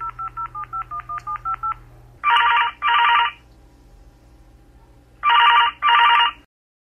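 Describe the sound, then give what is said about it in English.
A quick string of about a dozen keypad dialing beeps, then a telephone rings twice in a double-burst pattern, loud, with a pause between the two rings. “I'm going to phone a friend to help explain.”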